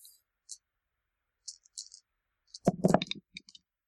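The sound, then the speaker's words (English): Dice being re-rolled in a game: a few light, sparse clicks, then a louder clattering tumble that settles into scattered small taps. No one speaks. “Can I spend my spell invoke to re-roll my dice and try to protect myself with an arcane shield?”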